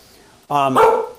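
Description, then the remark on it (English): A single loud dog bark with a harmonic, slightly drawn-out tone, following a brief quiet moment, as the dogs see people outside; no other sounds around it. “The dogs see people outside. Yes, I know. There's dogs out there.”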